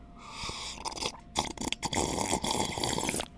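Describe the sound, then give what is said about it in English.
A drink is poured with a steady, splashy liquid rush, then broken by short wet slurping sips and gulps, moderately loud with no talking. “Let me put some sip in it.”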